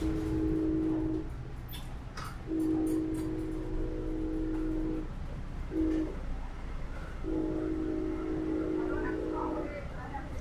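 A train horn blasts four times in a long, long, short, long pattern, loud, over a steady low rumble of the moving train, sounded by the driver while passing well-kept clapboard houses with American flags on the lawns.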